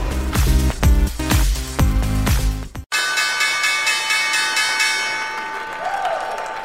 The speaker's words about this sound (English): That was the opening bell this morning. Caterpillar, as you can see, celebrating 90 years being listed on the New York Stock Exchange.